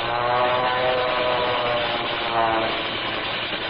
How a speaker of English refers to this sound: And there's that other plane. Hey, look, the second plane has made a dive on them. They're going to it.